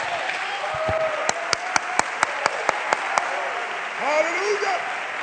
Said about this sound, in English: Somebody clap your hands unto the Lord.